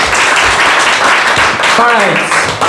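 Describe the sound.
A loud, steady round of applause fills the whole clip with dense clapping, and a voice rises briefly in a whoop or cheer near the end.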